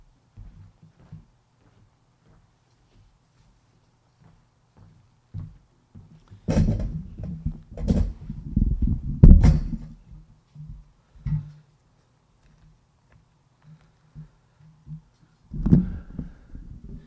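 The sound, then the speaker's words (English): A stool is fetched and set down by a speaker before a Bible teaching, with a cluster of clunks, scrapes and knocks mid-way and one final thump near the end, over a quiet hum. “So what I'm going to do is I'm going to grab the stool.”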